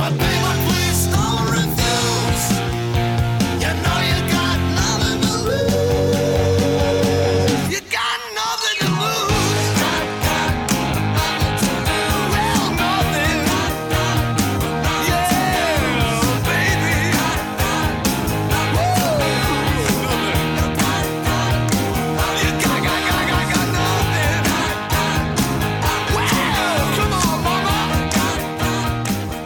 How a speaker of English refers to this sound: This is Hard Boogie Rock